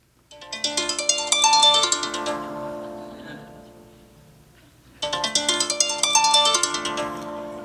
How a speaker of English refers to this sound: I heard John's alarm. This is what I heard.